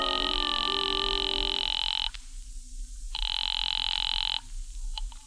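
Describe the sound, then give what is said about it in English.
A telephone rings twice through a phone line, a call placed from a phone booth to a cafe; each long buzzing ring is separated by a pause, sounding thin, with no one speaking. “I waited around the lobby for a while, then stepped into a phone booth and called the tambourine.”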